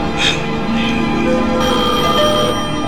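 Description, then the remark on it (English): A telephone rings loudly and continuously with a bright, metallic bell tone, layered over a dense musical backing for the whole few seconds. “Answer that phone, she gotta be there.”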